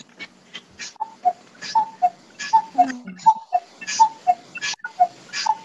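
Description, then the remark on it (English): A clock ticks steadily, its sharp tick-tock repeating in an even rhythm, with faint rustling noises and soft background sounds in between. “Is that your clock”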